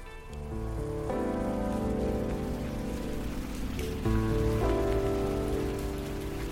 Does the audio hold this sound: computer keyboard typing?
no